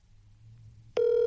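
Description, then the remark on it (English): A quiet low hum gives way to a steady electronic phone ringing tone that starts abruptly and holds, loud, as a call to a cell phone rings unanswered, with no voices. “I mean, he didn't answer, which means he's probably on a call.”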